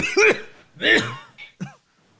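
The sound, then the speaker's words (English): A voice imitates coughing: two strong, hacking coughs followed by two shorter, quieter ones, loud, with no other talking in between. “was behind the scenes coughing when they would say, so what do you think about, what is the three?”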